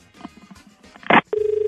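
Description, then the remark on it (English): A telephone rings with a steady, rapidly warbling electronic tone that starts abruptly after a short burst of clatter and a few faint background sounds, fairly loud. “Oh, whose idea was it for you to keep ringing me?”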